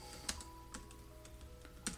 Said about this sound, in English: I'm just going to do a quick Google search right here. You can hear me typing.